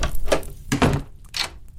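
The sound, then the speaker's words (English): A door swings shut with a solid thunk as a person backs out of a burning room, followed by the sharp metallic clicks of a lock being turned, fairly loud, with no voices. “Holding a blazing piece of newspaper before me, I backed out of the door and locked it.”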